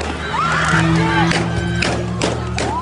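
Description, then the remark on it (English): Several sharp gunshots crack out at irregular intervals, about four in quick succession, over the constant roar of a shouting protest crowd on an interstate with scattered yells and screams, as a blue Jeep Wrangler speeds through the protesters. “You can hear gunshots ring out.”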